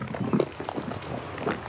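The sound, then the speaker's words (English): Thick bubbling from mud pots along the Fountain Paint Pot Trail, caused by gas coming up through the mud: irregular low, gloopy blorps and pops over a steady churning hiss, with a louder cluster of bursts early on and another near the end. “So the mud pots are like very bloop.”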